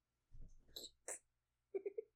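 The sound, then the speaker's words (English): A sudden sneeze-like burst is followed by three quick, short chirps or yelps from a startled cat in rapid succession, fairly loud, with no talking. “Scared the cat.”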